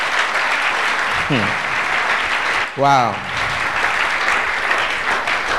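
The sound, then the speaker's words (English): Sustained crowd applause, a steady dense wash of clapping throughout, with a voice briefly calling out over it near the middle. “Oh, is this a good place to clap?”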